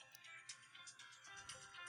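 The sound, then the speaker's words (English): A mobile phone rings with a melodic electronic ringtone: bright, repeating tonal bursts that keep going steadily throughout, fairly quiet, with no talking over it. “Jesus, my phone.”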